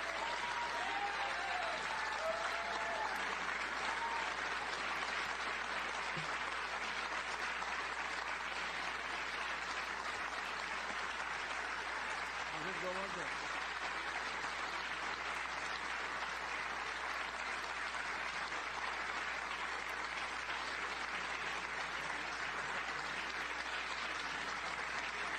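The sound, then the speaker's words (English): Sustained applause from a large audience, a dense, steady wash of clapping that holds at an even loudness for the whole stretch, with a few faint voices and whistles buried underneath, in support of a speech statement that Jerusalem will remain Israel's undivided capital. “Very long applause. Very, very long applause in support of.”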